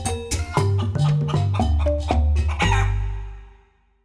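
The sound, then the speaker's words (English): A hen clucks in a quick, steady run of loud calls, then a rooster lets out a drawn-out crow that fades away. No one speaks. “Even though Hen looks so delicious as she comes a peck, peck, pecking down to the riverbank, Crocodile does not eat her.”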